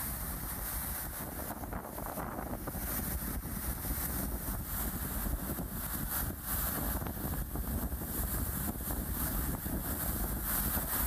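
Strong wind buffets the microphone in a steady, roaring rush, with churning waves on the Sea of Galilee, a lake in a valley 600 feet below sea level, loud and continuous for the whole stretch with no voices.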